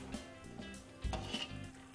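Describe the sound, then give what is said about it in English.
Yuca fries frying in 350-degree oil until golden brown and crispy: a steady crackling sizzle runs throughout, broken by a few low thumps and sharp metallic clinks like a utensil knocking the pan. No one speaks. “Nice and golden brown, crispy. And once again, you've got 350 degree oil here, so be very careful.”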